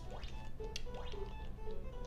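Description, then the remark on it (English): Water drips with two or three hollow, upward-bending plinks spaced about a second apart, set against a steady low background hum with no one speaking. “Maybe drip, yeah.”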